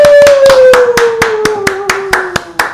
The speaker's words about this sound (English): now that you've stopped clapping, I'm going to thank you for sitting in with the band.